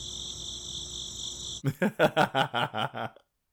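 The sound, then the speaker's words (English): A fly's thin, steady high-pitched buzz hums for a moment, then breaks into about eight quick, rhythmic buzzing pulses, fairly loud, before cutting off into silence. “What's a buzz in this forge?”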